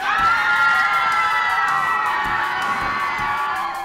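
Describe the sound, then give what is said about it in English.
A crowd of children on a roller coaster shrieking and shouting together as it goes into the corkscrew, a sustained high-pitched chorus of screams that stays loud throughout. “Oh, there they go into the corkscrew and.”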